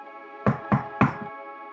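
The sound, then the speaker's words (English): Three sharp, evenly spaced knocks on a car window by a smiling blonde woman in sunlight, fairly loud, with a faint fourth tap trailing off, over a steady low humming drone. No one speaks. “Someone knocks on my window, making the decision for me.”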